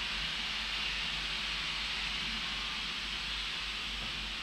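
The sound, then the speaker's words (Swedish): A steady, harsh hissing rush of sandblasting on the walls of a house across the street that is being renovated runs unbroken for the whole stretch, bright and gritty, over a low constant hum, with no voices or pauses. “Jag tror de blästrar. Det gör man på husväggar.”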